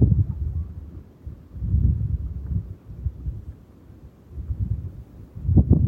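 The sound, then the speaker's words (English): Wind moving through dried grasses, a low, muffled rushing that swells and eases in several gusts, with a stronger surge at the end. No voices. “And the susurrance of the sound in the dried grasses.”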